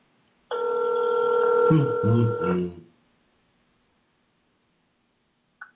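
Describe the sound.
A telephone rings on an outgoing call: a steady electronic ringback tone lasting about two seconds, with a voice briefly speaking over its final stretch before the line falls silent.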